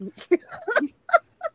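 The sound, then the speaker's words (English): A person imitates birds chirping with a quick series of short, squeaky vocal calls, about five or six bursts, moderately loud with brief pauses between. “Birds chirp.”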